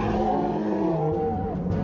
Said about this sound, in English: Yeah, where did you get that roar? It was... Yeah, a cave bear.